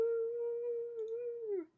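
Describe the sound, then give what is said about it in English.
A single voice imitates a gust of wind howling through a canyon with a steady, drawn-out 'oooo' that holds for over a second, then slides downward and fades out. It sounds fairly loud. “When a gust of wind blows through, it howls like you've never heard.”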